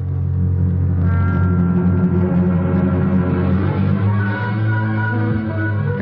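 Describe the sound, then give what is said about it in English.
A car engine hums steadily, its low rumble rising slightly in pitch before easing off as the vehicle slows to a stop at a brewery and warehouse by a river; no one speaks. “I pull up at Pfeffer's Brewery and Warehouse.”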